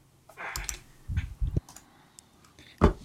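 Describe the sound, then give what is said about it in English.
Typing on a computer keyboard as players enter their initiative rolls for a game: a handful of crisp key clicks in uneven bursts, with short pauses between them and no talking. “So, once again, combat, I ask that all of you roll initiative, and if you want to just type your initiative into the things, you can do that.”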